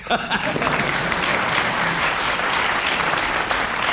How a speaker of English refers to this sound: The audience may applaud if you're getting warm.